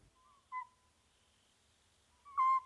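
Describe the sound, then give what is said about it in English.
A Cyprus scops owl calls at night: two short, clear whistled notes about two seconds apart, the second louder and slightly longer, against a quiet, still background. “Magnus got to eavesdrop on the secret nighttime activities of the Cyprus copse owl”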